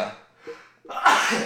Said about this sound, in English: excuse this guy. Bless you. sorry, guys.